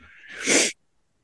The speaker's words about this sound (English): I gotta stop sniffing like that, man. I do honestly have a cold. I haven't been doing anything.